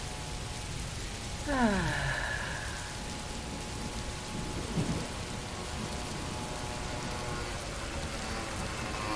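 Steady rain falls throughout as a dense, even hiss, with no voices. Early on a brief descending whine cuts through, and a short soft thud follows a few seconds later.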